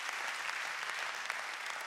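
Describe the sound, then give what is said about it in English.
An audience gives the Lord a hand clap, clapping steadily in a dense continuous wash of many hands clapping at once with no voices rising above it. “And I want to give the Lord a hand clap for showing up and touching people and healing people.”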